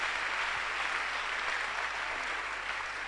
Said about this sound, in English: Your clap is not correct at all.